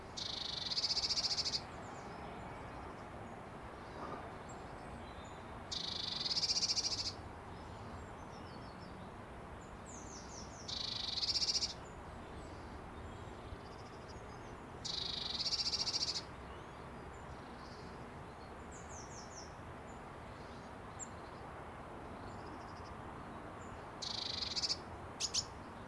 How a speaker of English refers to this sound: Cheep at the end there. Yeah, so blue tits, there are lots of chirps and cheeps, aren't there? Tweets, yeah. Chirps and cheeps. Yeah, but that chirring noise I found to be one of the common sounds that I've learnt mainly to associate with the